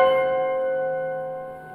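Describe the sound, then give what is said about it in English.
Tubular bells strike a dissonant tritone in a requiem, one clear stroke whose bright metallic partials ring on and slowly fade, moderately loud with no voices. “And at that point, the tubular bells go.”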